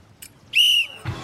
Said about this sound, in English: And everybody stops, and then yeah, he blows the whistle. There's like silence. Everyone in the entire, like everyone in the pool just is looking at him. And then he gives everyone permission to continue by blowing his whistle.